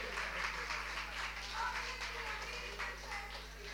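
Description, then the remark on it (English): A crowd applauds the last act of the night at an evening show, a dense crackle of many hands clapping that holds at an even, fairly loud level throughout, with faint voices mixed in underneath. “Go on, let's give him another welcome hand.”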